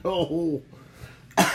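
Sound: cough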